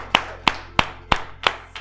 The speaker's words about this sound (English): Clap your hands one more time and you may be seated.